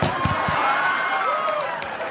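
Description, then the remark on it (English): A crowd claps in a dense, steady burst of applause with a few scattered cheers and whoops rising over it, holding loud and even for a couple of seconds. “I can't believe you clapped about that.”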